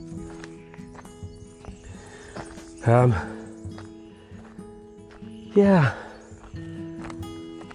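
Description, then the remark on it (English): A frog croaks twice, a few seconds apart: two loud, throaty calls that drop in pitch, heard over a steady low background hum. “So you can hear it, hear that. That's a frog.”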